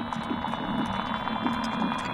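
Underwater invertebrates living at the bottom, such as water beetles and water scorpions, sing in a dense, steady chorus of buzzing and whirring, with thin high sustained tones above and soft low pulses repeating at a loose rhythm throughout.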